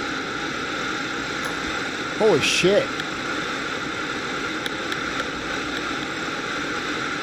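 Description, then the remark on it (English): A small plane's engine and wind roar steadily and loudly throughout, unbroken, as the plane makes an emergency landing on a highway among valleys and mountains, while a man lets out a brief startled exclamation partway through. “headed towards a highway to make an emergency landing”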